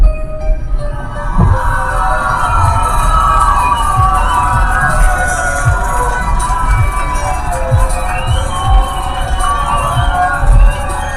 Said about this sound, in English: Thank y'all for y'all applause. Much appreciated. Really appreciate it.